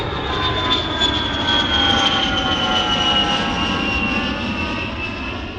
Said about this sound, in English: They started calling it like the Palisades pause, because people, I guess, like talking over their rose bush had to like wait for the plane to pass.